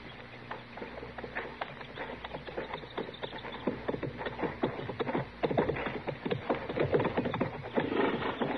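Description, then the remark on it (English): Horses' hooves clop unevenly on hard ground as several animals are led along, the steps overlapping with shuffling and faint background noise, growing slightly louder toward the end. “All right, Chester, you can bring the horses out now.”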